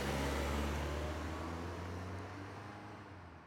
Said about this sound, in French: Il s'installe au volant et boucle soigneusement sa ceinture. Le moteur démarre, puis la voiture commence sa route.